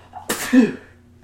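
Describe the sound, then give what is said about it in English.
A single sharp sneeze bursts out suddenly, a broad noisy blast followed by a brief voiced tail that fades within about a second. “Oh, sorry, I've just been sneezing.”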